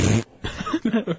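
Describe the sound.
A short, loud, raspy burst from a voice imitating a fart, followed by a few quick voiced, chuckle-like sounds.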